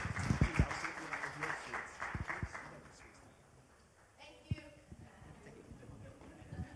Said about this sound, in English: But can we give them a round of applause as they get their sweets and back to their seat?